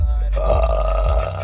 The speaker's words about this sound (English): Dude. I just had a fat claw come out of me when I fucking burped.